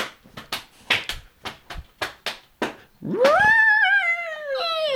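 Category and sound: vocal imitation, person imitating a horse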